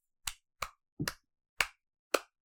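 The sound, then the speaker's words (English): A few sharp hand claps, fairly loud, in a slow, slightly uneven rhythm with one quick double clap in the middle, and no talking. “I don't know if you can hear me clapping, but I'm clapping.”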